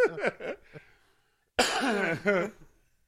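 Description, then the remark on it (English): A voice imitates a dry cough: a short rasping burst, a pause of about a second, then a louder, harsher, drawn-out cough-like bark. “A dry cough.”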